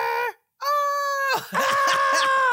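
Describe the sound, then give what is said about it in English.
A female singer's loud, piercing scream in a song cuts off briefly, then returns as a long sustained wail that turns harsh and guttural, a blood-curdling gut scream, sitting up front in the mix. “It's a blood curdling gut scream.”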